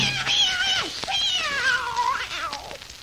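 A cat meows in long, drawn-out wavering cries, fairly loud, the pitch rising and sliding down in a couple of stretched yowls with no talking.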